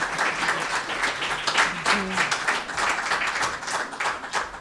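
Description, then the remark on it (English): A crowd applauds steadily for several seconds, a dense, even wash of many hands clapping with a bright crackling texture and no clear individual rhythm. “You can clap if you want.”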